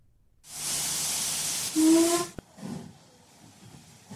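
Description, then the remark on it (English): A loud burst of steam hissing from a train at Watford Junction station, with a brief whistle-like tone rising through it before it cuts off, followed by faint station clatter. “Early on the following Saturday morning, Stan finds himself getting on a train at Watford Junction.”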